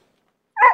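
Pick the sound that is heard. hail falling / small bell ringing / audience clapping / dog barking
dog barking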